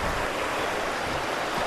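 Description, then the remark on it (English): Fast-flowing river water rushes in a steady, loud, continuous roar, filling the whole moment with no pauses or voices, heard while crossing over the river at a nature reserve in Twyford on a sunny September day. “Oh, that river was running fast.”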